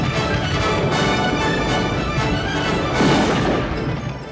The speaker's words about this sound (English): Wow, something's spooking the cattle. Stampede!